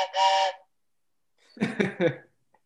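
A brief, steady train whistle blast sounds clearly on its own, followed after a pause by a few rough, breathy chuffing bursts.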